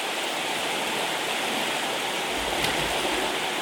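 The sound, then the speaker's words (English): Steady rushing of a forest stream, water flowing continuously over rocks, with a brief splash-like burst near the end and a low rumble underneath. “Put it in the water and wash it. And put the water in. Wow, look at the water.”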